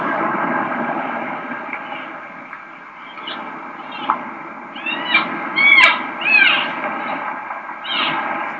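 A cow elk gives a series of short, high, nasal mews, a 'selfish mew', several in quick succession and rising then falling in pitch, over a steady, noisy rumbling background.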